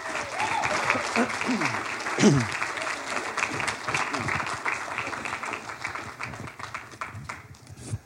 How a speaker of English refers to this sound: And so let's sow into their lives here today, these speakers, and give them the big amens and just encourage them and clap.